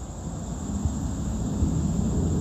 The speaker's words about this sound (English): As the airplane goes by and interrupts their conversation because of air traffic